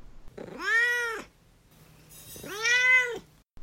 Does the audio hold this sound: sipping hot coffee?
no